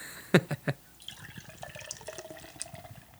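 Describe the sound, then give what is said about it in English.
Beer glugs into a glass, starting with three quick knocks or clinks and then settling into a steady, bubbling pour that runs to the end. “I'm sure I'm going to finish that oatmeal and pour something in here.”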